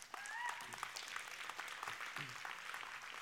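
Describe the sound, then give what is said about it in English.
A church audience breaks into steady applause for the Lord at the end of a service, many hands clapping at once in a dense, continuous patter, with a few faint voices and whoops rising through it. “Go ahead and give the Lord a hand clap.”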